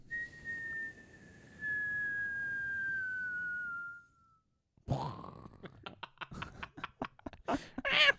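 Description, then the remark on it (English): A person whistles one long, steady note that slowly slides a little lower in pitch for about four seconds, then a pause and a burst of loud clattering, crashing noises. “So I'm just on there whistling and shit”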